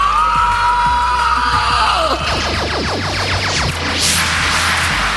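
A loud chorus of shrill monster screeches from the Screech Bitches as they swoop down to attack the youth on Arborea in a movie, layered and overlapping, with rapid swooping cries sweeping down in pitch and a harsh, rising shriek near the end, over a constant low rumble.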